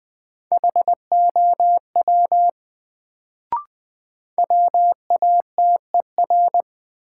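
Morse code beeps at 20 words per minute in a drill of sentences from the 100 most common words: a steady mid-pitched tone keyed into short and long pulses, sent in two runs separated by a pause with a single faint click.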